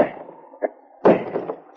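A rock strikes a padlock in a few blunt, heavy blows: a single knock, then a louder thudding impact followed by several rougher hits in quick succession, with no voices.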